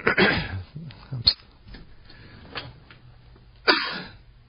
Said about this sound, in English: maybe I just need one good cough. I don't know. Maybe I got the black lung.